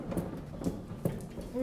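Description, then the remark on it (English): Feet stomp on a floor, a handful of dull thuds landing in a loose, uneven rhythm over a couple of seconds, moderately loud against a soft background, as people seated in a circle stomp their feet during an exercise. “Stomp out your feet.”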